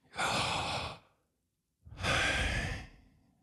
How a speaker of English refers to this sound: And if that's the case, what are we left with? Breathing.